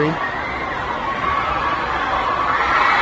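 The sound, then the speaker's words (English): A large stadium crowd, recorded on a cell phone, cheers and roars continuously as a cat loose in the stadium is brought to safety, a dense, loud wash of many voices that holds steady for the whole moment. “The whole place is excited, going crazy because of this cat.”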